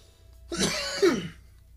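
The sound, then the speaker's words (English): A single loud, close-up cough with a rough, throaty rasp, lasting under a second and sounding right against the microphone, with no talking around it. “And remember, every time somebody coughs into the microphone on a podcast, that's some unprofessional shit.”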